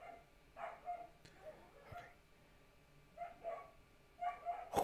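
Dogs bark in short, repeated bursts, several sharp yips clustered together with brief pauses between, against a quiet background.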